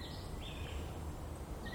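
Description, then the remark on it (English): A bird calls faintly along an easy, well-groomed walking trail in a few drawn-out, high whistled notes over a steady low rumble of background noise, with no talking. “What's that one? You hear that bird?”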